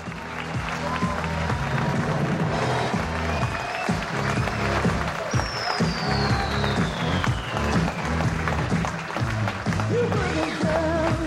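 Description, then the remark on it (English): A sold-out live audience at Cobb's Comedy Club in North Beach, San Francisco, during San Francisco Sketchfest, applauds loudly and steadily, with scattered shouts and cheers rising over the dense, continuous clapping throughout. “Lots of enthusiasms. People over here were yelling something.”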